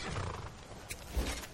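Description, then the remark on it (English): A wolf snarls aggressively as it comes to attack, near a stand of spruce, a harsh, rumbling growl that swells with a couple of sharp bursts over a brief moment, with no voices present. “I see a wolf here.”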